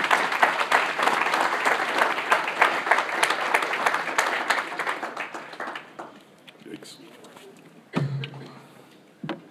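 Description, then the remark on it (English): A crowd gives a loud, dense round of applause in appreciation of the people in a school who put in time for others' children, many hands clapping steadily for about six seconds before it thins out and fades, with a couple of sharp isolated noises at the end. “So I'm going to ask you just to give them a big round of applause before I continue.”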